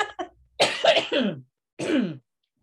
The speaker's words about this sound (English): Can I stop and cough again? Of course you can.